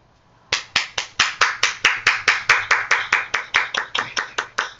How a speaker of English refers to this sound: We clap for our ancestors. I'm clapping for your speech.